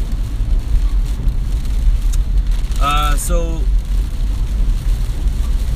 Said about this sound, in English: Man, it is a downpour here. It is raining hard. Not looking forward to have to get out of this car in 5 minutes and walk in.